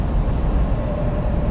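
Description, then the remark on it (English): A semi truck being driven past on the road, heard as a steady, loud low-frequency roar and rumble with a faint, thin whine running through it for under two seconds, with no talking. “Sorry, I'm going by another semi truck real quick.”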